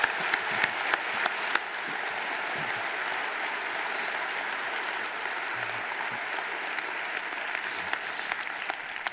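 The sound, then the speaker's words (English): A large church audience claps loudly and steadily for several seconds to thank the children's ministry team and volunteers, a dense, sustained wash of applause with no talking over it. “Let's clap loud enough so that the volunteers that are serving back there can hear us, okay?”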